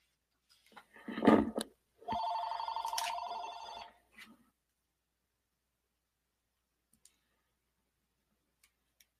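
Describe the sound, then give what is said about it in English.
A telephone rings twice, a short clanging burst followed by a longer, steady trilling ring, then it falls almost silent apart from a few faint ticks. “Phone went off. Obviously a wrong number because it only rang twice.”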